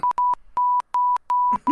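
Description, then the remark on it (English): Morse code beeps signalling help: a steady mid-pitched tone keyed on and off, one short beep followed by four longer ones in an even rhythm, loud and clear with a little rustling near the end, played as a game. “It's Morse code for help.”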